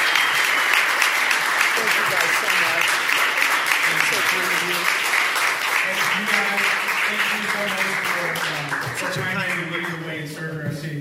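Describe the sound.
A crowd applauds steadily and loudly for about eleven seconds, a dense wash of clapping with voices and cheers mixed in, easing slightly toward the end.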